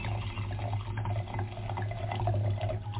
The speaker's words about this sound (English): But I'm dying to see what this looks like when it comes out of the bottle into the glass.